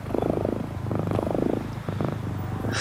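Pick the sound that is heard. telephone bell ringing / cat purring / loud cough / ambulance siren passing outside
cat purring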